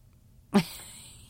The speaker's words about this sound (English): See, my kitty even said so. She says, yeah, think about it. She's got to put her two cents in, you know.